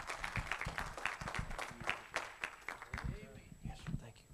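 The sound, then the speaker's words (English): A church audience applauding to welcome a visiting guest and his family: dense, steady clapping from many hands that stays fairly loud across the whole stretch, with a few voices calling out among it toward the end. “So y'all welcome and make him a round of applause.”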